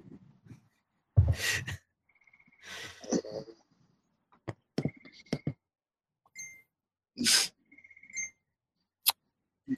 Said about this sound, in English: Who has the crickets in the background? That's definitely us. Yeah, that's nice. Loud. I'm impressed.